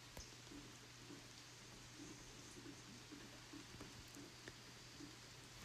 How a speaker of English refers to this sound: Can you hear the rain in the gutter spout? And you can hear the rain dripping off the roof. And over in the woods, you can hear the rain hitting the leaves and falling off the leaves and hitting the ground.